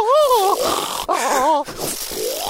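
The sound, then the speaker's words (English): A person loudly imitates a woman's hammy snoring in her sleep with their voice: two or three drawn-out, wavering, groaning breaths in quick succession, with no other talk. “Her snore could get really massive, like pants.”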